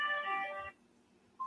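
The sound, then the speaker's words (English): A steady electronic ringing tone plays for under a second, then stops, leaving a quiet gap before another brief tone begins: an outgoing phone call ringing on the caller's end while waiting for a woman to answer. “People know how to answer the phone. All right. She's taking a little while, so we're probably going to hang up.”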